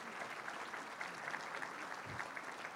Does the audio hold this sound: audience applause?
yes